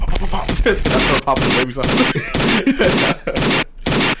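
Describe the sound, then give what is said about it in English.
Rapid bursts of machine gun fire, a loud, rattling run of shots in several quick volleys with brief gaps, apparently voiced by a person imitating the gunfire. “She do the gunshots again, like a machine gun.”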